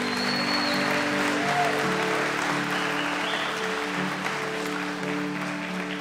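Sustained audience applause at a church service, a dense, even clatter of many hands clapping at a steady level for several seconds, with low held musical tones humming underneath.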